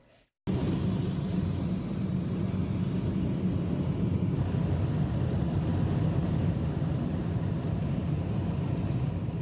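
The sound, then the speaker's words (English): A loud, steady roar fills an airliner cabin from Portland, Oregon, mid-flight after a section of the cabin ripped off leaving a gaping hole, with more than 170 passengers on board; deep rumbling mixed with harsh rushing air, continuing without pause and with no voices audible. “One passenger captured the scene during the very tense but silent moments after the incident happened.”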